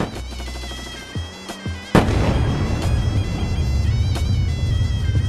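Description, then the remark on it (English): Distant gunshots crack out at irregular intervals in Beirut around 4 a.m. on the night of 13 to 14 July 2006, several sharp isolated reports echoing over a steady low rumble, with no voices present. “We begin to hear shots far away.”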